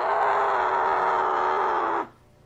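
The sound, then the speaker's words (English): A single long yell muffled by a pillow, loud, held steadily for about two seconds before cutting off abruptly into near silence. “Sorry, I had to yell into a pillow out of...”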